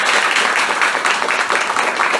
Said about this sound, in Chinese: 你们有一个十分棒的 mentor， 请给他们一个很大的掌声。